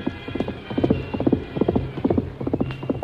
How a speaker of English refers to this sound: The Lone Ranger was far ahead. In spite of the rough ground where a misstep would have meant death for both horse and rider, Silver's hoofs beat out a savage tattoo.